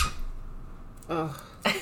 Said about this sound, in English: And we love Ruru, and she squeaks.